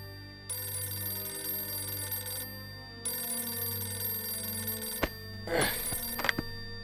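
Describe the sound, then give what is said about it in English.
An old-style telephone bell rings at 5:40 a.m. in two long, insistent bursts, each about two seconds, then stops with clattering clicks as the handset is picked up. No one speaks. “But at 5:40 a.m., one phone call changed everything.”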